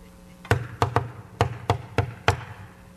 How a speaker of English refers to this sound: Knock on the door to heaven's provision has these words, knock and keep on knocking. It's not because he who's inside is deaf. He just wants to see how bad you want it. If it's not worth two knocks, don't bother.